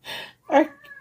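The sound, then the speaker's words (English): A pet cat in another room meows loudly: a breathy opening burst, a short pause, then a strong rising-and-falling meow that trails off into a thin tonal whine. No talking. “Oh my gosh, what is with our cat?”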